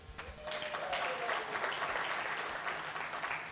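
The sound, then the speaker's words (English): A church audience bursts into sustained applause to show who has children, many hands clapping in a dense, steady wash that holds its level for several seconds, with a faint voice briefly audible underneath at the start. “By round of applause here, who has children?”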